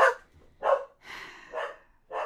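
A dog named Jade barks about five times in a quick, slightly uneven series, moderately loud, with one longer, rougher bark in the middle and no talking.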